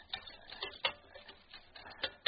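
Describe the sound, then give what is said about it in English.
A couple of cans of beans being opened at a campfire meal stop, a series of sharp metallic clicks and ratcheting scrapes at uneven intervals, like a hand can opener cranking around a lid, with no voices. “I opened up a couple of cans of beans I had in my roll.”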